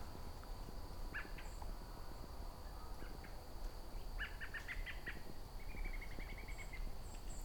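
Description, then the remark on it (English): A flock of white-throated sparrows at sunset gives short, high peep and chip calls in scattered bursts, some in quick runs, over a steady background hiss of insects, with no talking. “Very easy to find a flock of white-throated sparrows if they're nearby you at sunset, because that's the sound they'd be making.”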